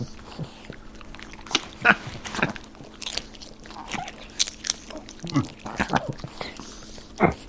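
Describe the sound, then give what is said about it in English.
Two small dogs grunt and chew, with wet smacking, crunchy bites and snuffly snorts coming in irregular bursts over a faint steady background hum. “Kind of smaller dogs.”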